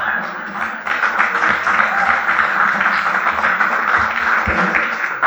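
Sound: audience clapping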